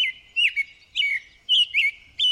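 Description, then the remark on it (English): An American robin sings a steady string of short, clear caroling phrases, about five in quick succession with brief pauses between, fairly loud with no other sounds. “Once more, here's the long-winded robin.”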